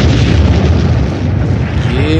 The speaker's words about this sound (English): Yeah, epic explosions.